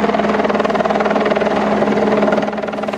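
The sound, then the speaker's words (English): A helicopter roars steadily overhead during a North Shore Rescue operation near Grouse Mountain, Vancouver, long-lining a lost young man off the BCMC trail. Its rotor beats in a fast, continuous chop with a dense engine whine, loud throughout, with no voices. “What you see there is a young man lost on the BCMC trail near Grouse Mountain, long lined out by helicopter just a short time ago.”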